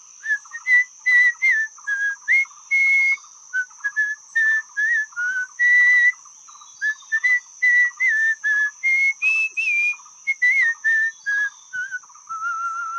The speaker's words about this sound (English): He'd come to catch fish in the mighty river. And as he walked along, he whistled a tune.